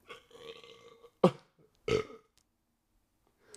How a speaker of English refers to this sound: All right, guys. Sorry, I didn't mean to Beavis and Butthead this entire podcast, but I have the record for most burps.